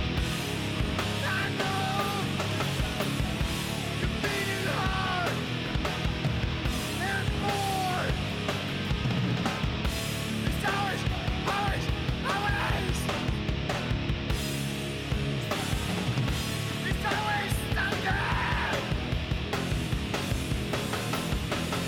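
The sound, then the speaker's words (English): A loud, densely layered rock track plays continuously, with a raw male voice shouting and half-singing over driving drums and distorted guitars. “It's also got lyrics in there. And I can't remember the context of the song. But he shouts, sings.”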